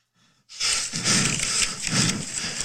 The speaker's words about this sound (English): Heavy breathing. Well, he's sick, actually.